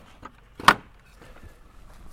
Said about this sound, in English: We have to keep stopping the truck to open up a series of gates that help keep the precious horses in place.